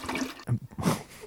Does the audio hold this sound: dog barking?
no